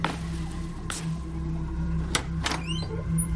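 A door is opened by its knob: a few soft clicks and thumps from the latch, then a short creaky squeak, all over a steady low hum. No one speaks.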